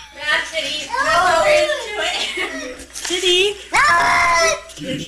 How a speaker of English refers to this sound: So here's sound of a cat trying to not take a bath.